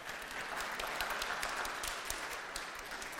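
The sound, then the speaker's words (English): An audience claps steadily, a dense wash of many hands with sharp bright crackles throughout, sustained at an even loudness for a few seconds with no one speaking. “Give them a clap.”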